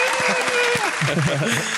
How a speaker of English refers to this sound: Can we get a clap from the studio audience in the back?